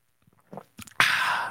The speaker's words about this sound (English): How about a sip of the day right there, right off the bat? Tasty. Mm. By the way, sipping out of an Ike's mug, again, playing that fast, loose, and reckless here in my own studio, drinking a beverage without a lid on it.